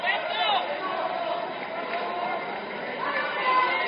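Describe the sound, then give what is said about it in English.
Dense crowd chatter fills a packed indoor gym, the Cavalier Gym, at a basketball game between rivals Owosso and Corona, a steady wash of many overlapping voices with occasional louder shouts and squeaks rising above the din. “Big crowd on hand here tonight. Great rivalry, Owosso and Corona. We're here in the Cavalier Gym. Yeah, the stands are full.”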